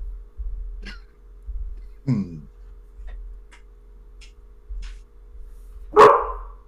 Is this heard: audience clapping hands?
no